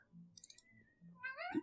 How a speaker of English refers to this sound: My cat's yelling at me, so I think that means it's time to end the episode.